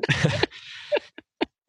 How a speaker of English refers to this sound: And also, I have a cold in my chest, so I'm going to be coughing a lot, particularly when one of the other people speaks. So just bear with me on that. So I apologize in advance.